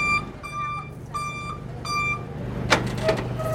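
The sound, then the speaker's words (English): A delivery truck carrying a manatee idles as reversing beeps sound three times, then its back door is opened with a couple of sharp metallic clanks and rattles. “They've just opened the back door, and there is a rubbery-looking manatee inside.”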